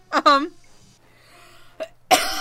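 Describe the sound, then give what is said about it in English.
Loud coughing: a raspy burst at the start, a brief hack partway through, then another harsh cough after a short quiet pause. “Oh, God, I'd like to plug that I'd wish this cough and throw the fuck away.”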